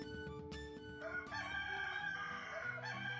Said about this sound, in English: A series of elven-raised roosters awakens the party early in the morning.